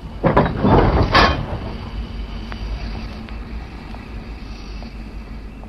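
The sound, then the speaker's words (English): A train slides into a platform at Euston, the London terminus, where the Irish Mail is waiting: a loud, hissing rush of noise swells in the first second, then eases into a steady low rumble broken by a few faint metallic clicks. “Here she comes, sliding into the platform where the Irish Mail is waiting.”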